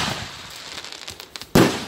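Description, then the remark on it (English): Fireworks crackle and pop, then one loud, sharp burst goes off near the end, leaving a fizzing tail. No one speaks. “Horses can get really freaked out by the sound of fireworks going off nonstop.”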